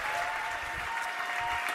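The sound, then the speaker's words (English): Steady applause from a church audience at Mosaic welcoming a guest pastor, a dense wash of many hands clapping at an even, sustained loudness throughout, with no voices standing out. “So would you please give a warm welcome, a big mosaic round of applause for my friend”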